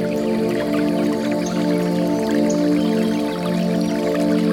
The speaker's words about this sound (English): As you continue walking, you get a glimpse of a quaint river. Chuckling to itself as the water trickles downstream.